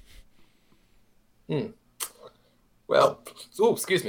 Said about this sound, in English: Little burp snuck out there.